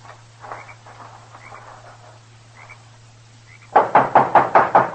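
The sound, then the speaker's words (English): A rapid, loud series of about seven knocks on the wooden door of a small adobe hut, evenly spaced, after a few quiet seconds of faint background noise. “There he knocked, and then disappeared inside.”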